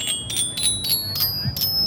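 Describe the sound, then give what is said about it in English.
A bicycle bell rings rapidly about six or seven times in a steady, even rhythm, each bright metallic ding clear over a faint low rumble. “And, you know, that's a big part of why we made Orba 2, so that you could take a sound like a bike bell and turn that into a musical instrument.”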